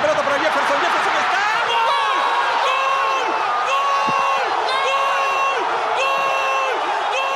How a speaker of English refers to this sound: In Peru, the celebration of people jumping and screaming after Farfán's goal was so intense, it activated an earthquake alarm detector in Chile.